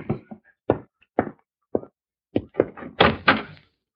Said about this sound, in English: Oh, excuse me. Someone's at the door.